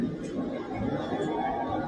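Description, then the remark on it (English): A protest crowd cheers and calls out together, cheering Black Lives Matter, Say Their Names and the names of George Floyd and Daunte Wright, a dense, steady wash of many overlapping voices that holds at an even loudness for the whole short stretch, with no single voice standing out. “I want you to listen to what some people are saying here as they're cheering.”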